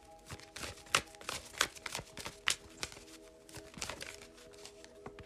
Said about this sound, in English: Let's shuffle a little bit more. I want to know more about this death card here.